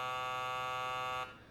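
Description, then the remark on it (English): A steady, harsh electronic buzz from a desk phone intercom, punched by a police detective, holds at one pitch for just over a second, then cuts off abruptly, leaving faint background hiss. No one speaks. “I nodded my head, and he smiled and punched the intercom on his phone.”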